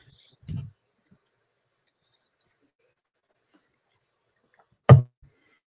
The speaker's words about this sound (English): Oops. It's the chair.